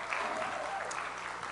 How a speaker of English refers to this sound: Wow, y'all did a great job. How about we give a hand clap to all those that help in the children's ministry?